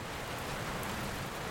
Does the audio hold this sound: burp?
no